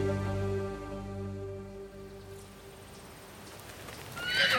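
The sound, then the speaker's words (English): A horse lets out a long, loud whinny that trails off after a couple of seconds, followed by quieter outdoor noise and faint hoof clopping as horses are ridden side by side through a vineyard on a ranch in Livingston, California, in spring 1967, with no one speaking. “Julio and Joe ride their horses side by side through the vineyard on the ranch”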